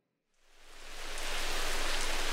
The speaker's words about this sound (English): It's been rainy today.